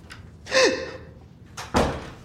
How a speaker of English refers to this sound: So I actually go, and I open the... This thing passed by slowly, like, tall, and I see clearly. So I open the door, and I check.